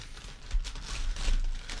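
A paper bag with a packaging sticker being opened: a steady run of dry, papery crinkling and rustling with a few slightly louder crackles, no voices, lasting under two seconds.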